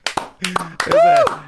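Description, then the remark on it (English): A lone person claps slowly and unevenly, sharp single claps spaced apart, while a voice lets out a drawn-out whooping cheer over the middle of them. “I'd be the one guy clapping.”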